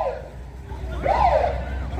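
An ambulance siren wails, its pitch sweeping up and down in a smooth arc over a steady low rumble of traffic or an engine, moderately loud.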